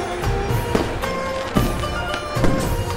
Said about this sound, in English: They welcome the new year with fireworks, but soon there will be something else in the sky to help bring in the new year.